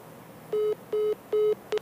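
A phone call cuts off as the caller's mother hangs up, with a string of steady, mid-pitched electronic beeps: three even tones at a regular pace, then a clipped fourth, with no one speaking.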